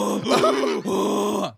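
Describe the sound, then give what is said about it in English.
A person imitates howler monkey calls with two long, loud, guttural hooting groans, each a rough, strained roar with a brief dip between them, no other talking. “They had howler monkeys there who they just script.”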